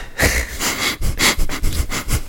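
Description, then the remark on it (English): A person sniffs a glass of wine, taking a series of short, breathy inhalations in an uneven rhythm, with no talking. “Take a moment to sniff what you're shoveling, ladies and gentlemen.”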